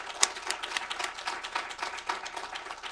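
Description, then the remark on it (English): A crowd applauds steadily at a women's gathering, many hands clapping in a dense, continuous patter with one sharper clap near the start, fairly quiet. “Please join me in giving a round of applause for all of the women who made this gathering possible and all of our other presenters.”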